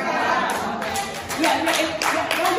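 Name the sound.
audience clapping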